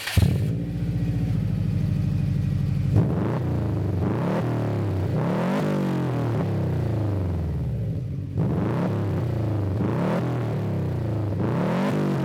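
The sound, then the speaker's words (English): A tuned Subaru STI boxer engine with a Gretti Performance Revolution RS exhaust idles with a lumpy, uneven burble, caused by unequal-length piping, then revs up and down several times in sweeping pulls, loud, with no talking. “Notice that burble-like noise coming through the exhaust note.”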